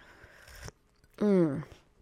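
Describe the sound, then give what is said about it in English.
A short slurping sip of coffee from a cup, then a brief pause and a satisfied, falling vocal sigh of relief. Otherwise quiet. “Oh, let's take a sip of coffee before I continue.”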